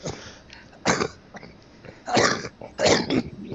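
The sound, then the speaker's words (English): A person coughs several times: one sharp cough, then a rougher, throaty burst of coughing, with short pauses between and no talking. “Oh, that sounds like a pizza cough.”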